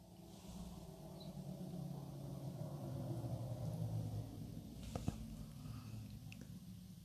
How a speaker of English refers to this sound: And right now, because these creepy facts, a car passed by outside. He looked at me. He's all, what was that?